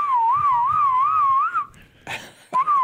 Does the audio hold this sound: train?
no